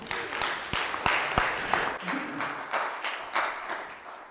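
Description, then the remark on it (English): An audience applauds a woman invited up to speak, with a few sharp, distinct claps at the start blending into steady, moderately loud clapping that carries on for several seconds. “Yeah, you can clap for her.”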